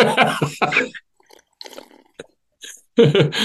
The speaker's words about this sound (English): Perfect. I just needed a drink. I just needed a sip of water.